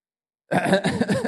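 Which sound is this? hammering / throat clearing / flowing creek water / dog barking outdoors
throat clearing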